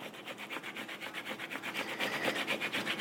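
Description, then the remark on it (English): Ginger root being grated: a quick, steady run of raspy scraping strokes, about five per second, hissy and fairly soft, with no voices over it. “I think I can hear you chopping your ginger root, maybe?”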